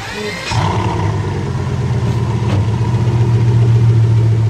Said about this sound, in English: The Veyron made its way onto the track. From where I was standing, on the back straight leading into turn one, I saw the black and red coupe streak by, sounding like some chimera of an F-18 and a rhinoceros. It cleaved the air.